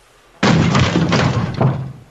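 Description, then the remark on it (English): Loud knocking on the speaker's door starts abruptly and continues as a rapid, heavy series of thuds for nearly two seconds, with no talking. “Yeah, there's somebody knocking on my door right now.”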